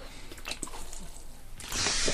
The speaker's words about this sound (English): I just need to get a drink of water too. One sec.